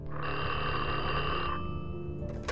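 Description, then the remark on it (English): A telephone rings in a sustained trill, with a bright, buzzing bell-like tone filling most of the moment before cutting off, with no voices; a phone call to a police officer. “Nearly 6 months after the investigation began, the cop who reported the photo albums received a strange phone call.”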